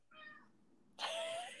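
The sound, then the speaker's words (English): A cat named Baby Kitty meows twice: a short, fainter mew followed by a louder, longer, brighter meow, with no one talking. “Oh, I don't know if you can hear Baby Kitty is like saying hello.”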